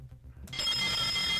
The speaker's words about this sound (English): The bell is just ringing by itself.